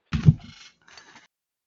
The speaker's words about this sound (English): clacking on the old keyboard, looking up all sorts of crazy shit.